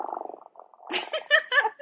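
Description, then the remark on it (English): A person imitates a cat purring: a rolling, throaty purr, a low rapid flutter that then breaks into brighter, raspy bursts, fairly loud, with no speech. “No, if I purr like a cat, you can hear it.”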